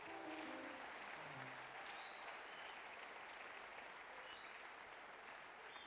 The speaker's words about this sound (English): Oh, clap your hands, somebody.